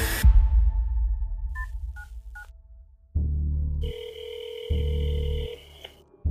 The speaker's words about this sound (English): I get my phone in my hand. I call 911.